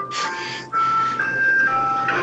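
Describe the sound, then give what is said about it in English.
An ice cream truck's tinkly jingle plays as it passes by outside on a city street, a bright chiming melody of sustained electronic tones over street noise, with a brief dip before the tune continues steadily. “I didn't even know we had ice cream trucks in the city.”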